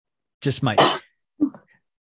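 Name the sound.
sneeze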